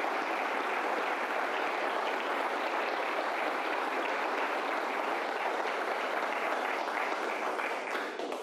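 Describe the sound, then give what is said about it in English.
A steady round of audience applause in thanks to the event's hosts, dense many-handed clapping sustained at an even level for about eight seconds with no voices over it. “So we just can't give these guys enough thanks, enough round of applause.”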